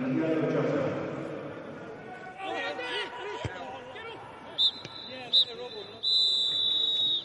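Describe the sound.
A referee's whistle sounds two short blasts followed by a long, sustained one, shrill and clear over the murmur of a stadium crowd and indistinct voices, signalling half-time at Molineux in a football match with Liverpool leading 1-0.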